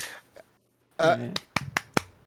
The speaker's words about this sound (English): I clap. There we go. Hopefully that didn't get like, that didn't just spike. Nope, I heard all four of them. You're good. That was four. I thought I did three.